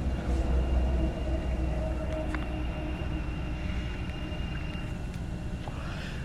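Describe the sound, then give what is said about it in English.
Steady road traffic rumbles throughout, a dense low drone of passing vehicles with faint higher whines and occasional brief clanks, loud, with no voices. “They can hear you. And the traffic.”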